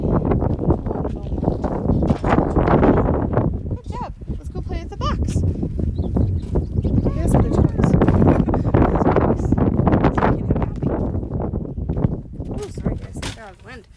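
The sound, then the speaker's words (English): Steady low rumbling wind in Wyoming buffets the microphone outdoors throughout, a constant dull roar beneath a person talking briefly, with a few faint clunks in the background. “and it's a little bit windy because we're kind of in Wyoming.”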